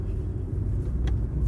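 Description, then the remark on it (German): A small Ford Ka car drives past, its engine a steady low rumble that holds even throughout, with no voices. “Ford Ka. Das ist auch hier so ein Auto, so eine Strandmuschel auf Rädern.”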